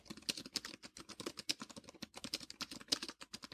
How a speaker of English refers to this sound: Now, I'm going to bring the device up close to the microphone and bring the microphone down to the device and just type on this thing so you can hear what the keyboard sounds like.